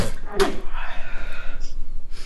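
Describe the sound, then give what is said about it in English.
A single abrupt sneeze bursts out, sharp and noisy, then trails off into a soft, airy breath lasting over a second. “I stumble down into the chamber and bless you”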